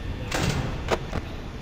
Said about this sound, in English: Oh, that was a pretty good judgment. He came to the door right after. You closed it.